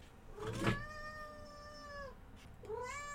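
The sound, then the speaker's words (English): A cat, Snicket, meows in two drawn-out, whining calls as a can of tinned salmon is opened for her, the first long and sustained, the second rising just after a brief pause, with a short clatter at the start and no talking. “Okay, I need to tithe the kitty.”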